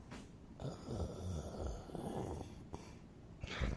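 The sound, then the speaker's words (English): A person mimics muffled snoring with their voice, as heard through a door: a low, rumbling, drawn-out rasp lasting a few seconds, moderately loud, ending with a brief breathy puff. “It sounds like muffled snoring.”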